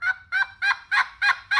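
male turkey gobbling

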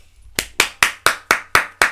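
hand clapping

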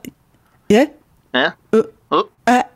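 burp

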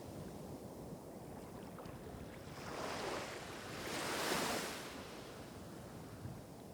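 geyser erupting

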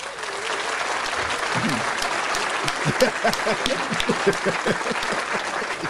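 clapping

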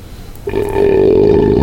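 loud belch

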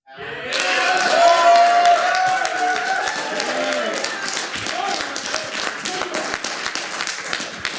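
raucous applause

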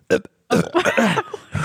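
loud burp

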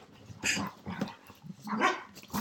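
dogs barking

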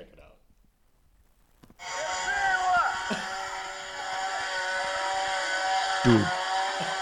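chainsaw running

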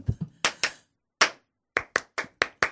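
hands clapping

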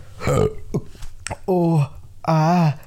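burp

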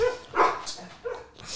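dog barking

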